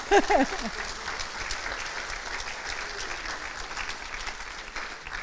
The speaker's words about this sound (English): Isn't God good? He deserves a clap for that, yeah?